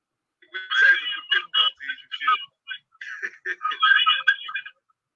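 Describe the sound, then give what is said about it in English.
A thin, tinny echo of the speaker's own voice plays back through a laptop, choppy and phone-like, in two bursts of garbled syllables over about four seconds, moderately loud with no clear words. “Oh, because I hear myself. It's crazy.”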